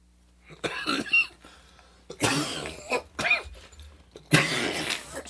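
A loud coughing fit after a hit of cannabis from a bong: several harsh, raspy coughs come in clusters with short gasping pauses between them, growing stronger toward the end. No one speaks.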